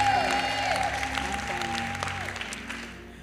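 A church audience applauds with dense, steady clapping over a low sustained tone, the clapping thinning slightly toward the end. No one speaks.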